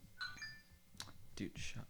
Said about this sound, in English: Oh, you're about to get copyrighted. By a notification? Yes. You cannot use that ringer. Probably.